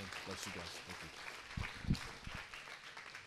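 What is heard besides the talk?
audience applauding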